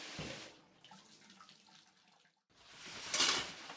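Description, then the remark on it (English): Water runs from a tap in short bursts with splashing, like hands scooping it onto a face, a brief quiet gap, then a louder rush of running water. “Eric rubs his hand over his face, wiping the water from it”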